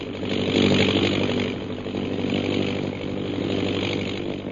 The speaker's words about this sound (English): We join them now as their plane circles over the hill.